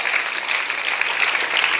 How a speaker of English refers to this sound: If you believe God is healing our pastor, clap your hands.